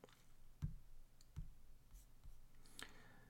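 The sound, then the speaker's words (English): A few sharp clicks at irregular intervals of a computer mouse button being pressed while setting up a screen share, with faint rustling and handling noise between them and no talking. “Well, this is taking a lot longer than I anticipated, because I keep clicking on other things by accident.”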